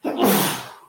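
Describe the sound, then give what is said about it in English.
A single loud sneeze, a quick sharp burst that trails off into a breathy hiss, with no talking around it. “Bless you.”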